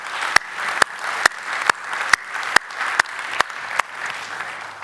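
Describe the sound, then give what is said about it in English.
An audience applauds steadily and warmly to thank those who did the painting, a dense wash of clapping with sharper, evenly spaced claps cutting through roughly twice a second, sustained throughout without any talking. “So would you just give them a little clap, you know, seriously.”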